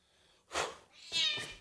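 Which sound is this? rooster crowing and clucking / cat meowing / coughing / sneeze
cat meowing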